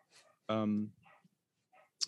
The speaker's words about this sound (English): Sorry, can you hear Teddy in the background barking his little head off? Yeah. Goddamn dog.